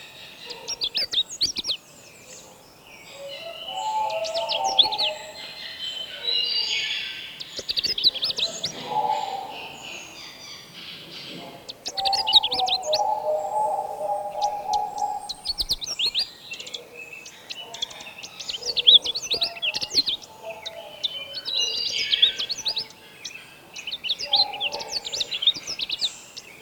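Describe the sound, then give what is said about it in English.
Canada warbler songs ring out in repeated bursts of lively, staccato chirping notes, three birds overlapping over a faint background hum, with no talking. “These lively staccato notes are from three Canada warblers.”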